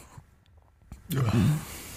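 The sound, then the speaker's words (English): After a second of near silence, a big yawn after a late night breaks out: a sudden breathy rush of air followed by a loud, low, drawn-out vocal groan lasting about half a second before it fades. “Big yawn. Late night last night, man.”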